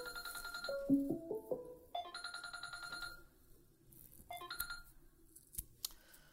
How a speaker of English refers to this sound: Someone's calling me. Hi, this is, I believe it's the doctor. Calling Dr. Love. Every device is ringing. I must be dying.